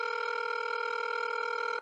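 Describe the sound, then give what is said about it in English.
A steady electronic telephone tone hums continuously, like an outgoing call ringing on the line to Pete Hegseth, holding at an even level for nearly two seconds with no voices. “So let's phone a friend and let's get on the horn with Pete Hegseth.”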